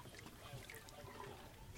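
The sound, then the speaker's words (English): Slow, sparse clicks from a pregnant whale, picked up by a hydrophone put in the water, faint sharp ticks spaced irregularly within a steady wash of watery, bubbling background noise; the whale is to the south-southwest. “Purnell puts the hydrophone in the water. Yo. And sure enough, he can hear her somewhere. I have a slow clicking wheel.”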